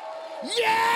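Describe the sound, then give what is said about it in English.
An audience breaks into a loud victory shout of praise to the Lord halfway through, a swelling roar of many voices rising over a steady sustained tone that carries on underneath. “I need about 100 people that got a reason to praise the Lord, to shout a victory shout.”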